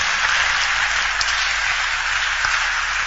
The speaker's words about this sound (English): Those who are clapping, may the riches locate you.